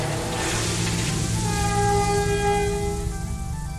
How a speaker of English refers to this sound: However, the train comes to a stop.